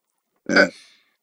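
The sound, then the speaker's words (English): A single short, little burp, fairly loud, with a throaty buzzy onset that trails off quickly into silence. “It wasn't a belch. It was just a little burp.”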